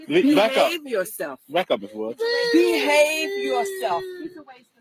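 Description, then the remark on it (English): Children crying and wailing in the background, with choppy sobbing bursts at first, then a long, sustained high-pitched wail that holds steady for a couple of seconds, fairly loud. “Kids crying, always crying in the background when the adults are acting like monkeys.”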